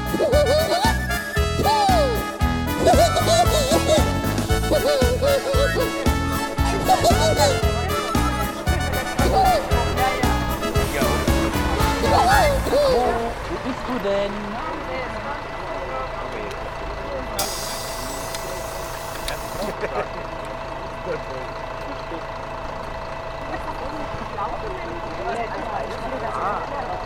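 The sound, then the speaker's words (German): An electric bus, number 19, pulls in with a steady mechanical whir, beeping signals and a hiss of brakes, then settles into a quieter hum as it idles, with faint voices. “E-Bus Nummer 19.”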